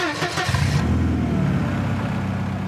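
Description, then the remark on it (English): A minivan engine cranks briefly, catches, and settles into a loud, steady revving rumble, with no voices. “You know what that sound means. Everybody hop in the minivan and let's cruise these suburban streets”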